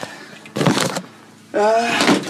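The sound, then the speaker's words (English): Wooden creaking from an attic floor or ladder, in two close bursts: a brief groan, a pause, then a longer, strained, squeaky creak. “Whoa, okay, things are starting to creak.”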